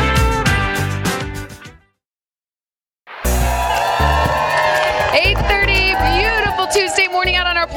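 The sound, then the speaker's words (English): A loud outdoor crowd cheers and shouts on a sunny day, many voices overlapping in a dense roar that cuts out briefly to silence before resuming even fuller, with whoops rising above the din. “We got a great crowd out here.”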